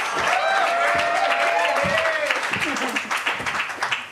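A crowd claps steadily through a dense wash of cheering and chatter, with bright ringing tones drifting over the noise and a few louder thumps underneath.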